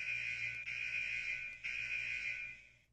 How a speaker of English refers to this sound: You say something for the buzzer. Stop the buzzer. Say something.